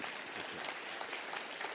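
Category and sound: crowd, audience applause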